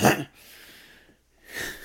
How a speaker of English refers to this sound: Oh yeah, just allergies, man. I know, man. I can't help the worst. This little hacky cough.